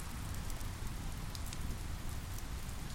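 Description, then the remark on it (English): Steady rain patters on a shelter roof at night, a constant wash of drops with occasional sharper taps, heavy low rumble beneath, no voices. “Cozy in this magical moment, confined to my shelter by the rain, undisturbed, and wanting to be nowhere else, I feel at peace.”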